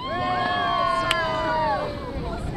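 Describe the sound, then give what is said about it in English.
A steady rumble of a whale-watching boat carrying some 50 visitors on the Caribbean Sea off the Dominican Republic, searching for humpback whales, with wind noise and a wash of sound, while gliding tonal calls and murmuring voices rise and fall throughout. “Some 50 visitors from around the world lean over the rail of the whale-watching boat Porto Mia.”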